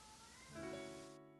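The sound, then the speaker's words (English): A single faint, drawn-out cat meow, a soft tonal cry that swells briefly and then fades, over quiet background hum. “Somebody has a cat.”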